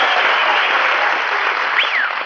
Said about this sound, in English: did you hear that ovation, Mary? Applause, cheers, whistles.